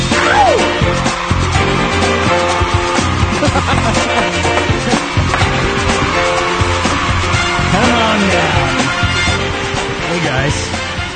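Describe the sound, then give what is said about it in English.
A loud, dense wall of crowd noise roars without a break, with rising and falling shouts cutting through and a voice calling out briefly over the din. “Guys, even had crowd noise.”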